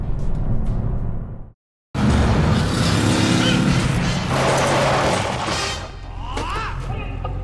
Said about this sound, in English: I'm doing over 130 miles an hour on this California racetrack. You would not believe what I'm driving.